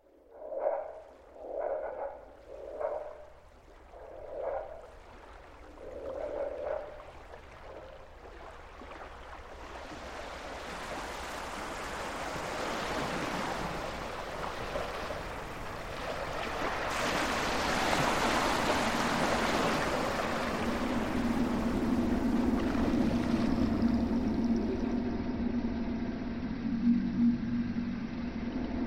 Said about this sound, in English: Probably the most interesting part of this for me is that anytime I've listened to the sound of water under motorways, there's very little life there. There's no insects, or the water is very barren of any kind of insect life.